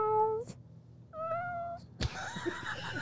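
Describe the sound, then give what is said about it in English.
A man imitates a cat, giving two drawn-out, fairly loud meows with a short pause between them, followed by a burst of rustling noise. “You're not going to meow for us?”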